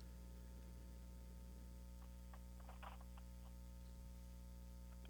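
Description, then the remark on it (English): A caller's dropped phone line during a radio call-in show carries a faint, steady hiss over a low electrical hum, broken only by a few soft, scattered clicks. Nobody speaks. “I didn't hear anything but a little hissing, but...”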